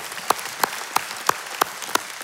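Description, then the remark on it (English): An audience claps in a steady rhythm, sharp claps landing about three times a second over a dense wash of many hands. No one speaks. “Man, yeah, you can clap for that.”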